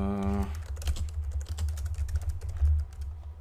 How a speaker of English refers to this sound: Sorry, I'm typing on something that doesn't exist. Give me a second, guys.